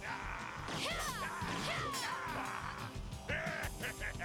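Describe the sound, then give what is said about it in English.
Arrows are shot from a bow in quick succession, each a sharp whoosh and thwack, mixed with squeaky chirping effects and a dense, loud background of clatter. No one speaks. “Oh, he's got his own bow and arrow set.”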